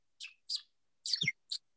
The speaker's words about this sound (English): Yeah, that's a bird. That's a bird. Cat bird.